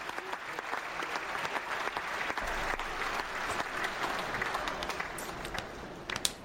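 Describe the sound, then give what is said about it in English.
An audience applause sound effect: a crowd applauding steadily, dense clapping spread across the whole stretch at a fairly loud, even level, tapering off abruptly at the end. No talking over it. “Had a little tail end on it. Audience applauding.”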